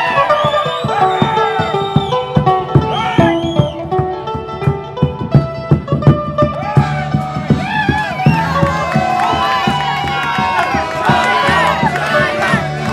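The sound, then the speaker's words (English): A large crowd laughs and chants a nickname in loud, overlapping voices, with rhythmic bursts of shouting rising and falling continuously for the whole stretch. “The crowd are laughing and chanting his nickname.”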